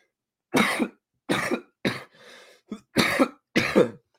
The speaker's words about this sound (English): No more coughing.